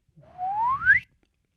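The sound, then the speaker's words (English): A single harsh whistle, made as a sound effect, sweeps steadily upward in pitch for under a second, loud and slightly breathy, ending abruptly, with no talking around it. “It's a little bit of a harsh whistle.”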